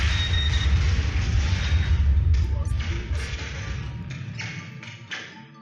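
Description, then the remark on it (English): A loud, rumbling sci-fi explosion as a torpedo explodes and sets off a chain reaction that blows up a Klingon ship: a deep sustained roar with scattered crackling bursts that gradually thins out and fades near the end, with no voices. “And the explosion actually causes a chain reaction and blows up the Klingon ship completely.”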